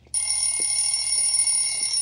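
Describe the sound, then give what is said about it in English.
A timer alarm suddenly starts ringing with a loud, shrill, continuous electronic tone that holds steady without pause until the end. “And when the time runs out, and this timer is going to run out here in a second, it's going to make a loud noise.”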